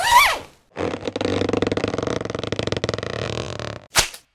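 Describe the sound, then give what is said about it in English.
A pouch that stores fizz bars is unzipped in one long, rasping pull of rapid ticking teeth lasting about three seconds, opened by a quick squeak and closed by a short sharp swish. “I have 200 of them stored in my pouch.”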